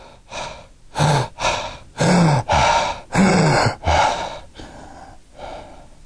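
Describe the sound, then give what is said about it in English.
A voice imitates Cheyne-Stokes respirations: a run of gasping breaths, about seven sharp, uneven inhalations and exhalations that grow louder, then trail off into fainter, shallower breaths at the end, followed by apnea. “And it's only when the oxygen drops or the CO2 really rises, it kind of wakes up and catches up. You know the breaths.”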